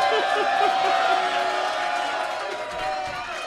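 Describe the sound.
An audience cheers and whoops steadily for a few seconds while a microphone is being readied. It is a dense wash of many voices with a few higher shouts poking through, holding fairly loud before easing slightly.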